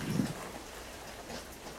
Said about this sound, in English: Let's see what the weather's doing this morning. Oh, grey, rainy, typical summer. The birds aren't singing yet.